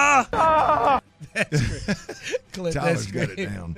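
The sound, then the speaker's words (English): A voice mimics the pained scream of a football player on the sideline who re-rolled his ankle: a loud, high, wavering wail held for under a second, followed by strained, broken vocal cries and groaning sounds. “That scream.”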